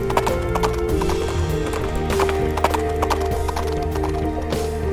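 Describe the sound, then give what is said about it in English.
Steady clip-clop of a horse's hooves at a brisk, rhythmic pace as it is ridden without stopping, fairly loud over a continuous musical backdrop, with a brief whinny. “Without delay, the princess jumped on the back of her steed and rode the last 45 minutes without a stop or a rest.”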